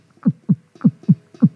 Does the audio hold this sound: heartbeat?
yes